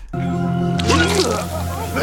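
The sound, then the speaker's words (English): Vomit sizzling on a hot barbecue grill where burgers are being grilled, from a boy who drank six or seven beers: a steady electric-sounding hum, then a loud, bright hiss with wet squishing that keeps going, with muffled voices mixed underneath. “you can hear it sizzling.”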